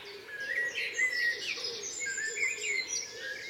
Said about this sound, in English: But as you can hear, it's a lovely dawn. Nothing too extraordinary singing. There's blackbird, song thrushes, the wren, a couple of wrens, pheasant.